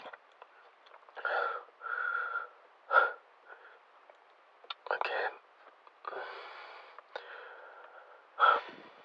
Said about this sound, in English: Trouble breathing.